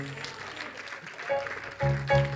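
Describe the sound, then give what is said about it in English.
A crowd gives God a hand clap of praise in a dense, steady wash of clapping that swells louder toward the end, with sustained musical tones and bursts of voice mixed underneath. “Come on, let's give them another hand.”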